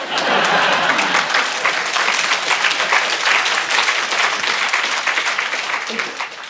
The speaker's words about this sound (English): I think this is applause from above.